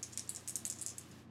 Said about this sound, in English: Oh, what the heck? Roll it. Let's hear some dice going on this podcast, folks.